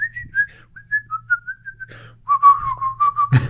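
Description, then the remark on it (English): Someone whistles the Kill Bill theme tune: a clear, wavering melody that starts in a higher phrase, pauses briefly, then drops lower, over a steady low hum, ending with a short noisy burst. “Or the Kill Bill whistle.”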